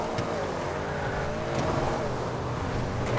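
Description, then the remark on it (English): A video game car engine roars steadily and loudly, with a few sharp crunching impacts cutting in as the car wrecks after getting on the wrong side of the road. “My car wrecked, so... Got on the wrong side of the road.”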